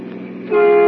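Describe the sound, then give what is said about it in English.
A car speeds closer at top speed on the left side of the road, its horn blaring in a steady, brassy tone that suddenly swells louder and holds, sounding urgent with no voices. “Driving back to the city, Nick and Patsy meet a car rushing toward them at top speed on the left side of the road.”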